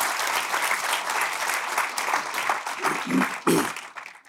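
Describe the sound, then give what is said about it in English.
Steady audience applause welcoming the evening's speakers, a dense wash of many hands clapping at an even level for about four seconds, with a few stray voices and a brief swell near the end before it fades. “And now, please join me in welcoming our speakers this evening.”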